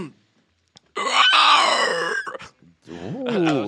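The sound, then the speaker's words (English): A person imitates a pig squeal with a loud, shrill, strained vocal screech lasting over a second, followed by a brief pause and a second wavering, harmonic squeal. “Why did it sound like a pig getting fucking like eaten by a T-Rex or something?”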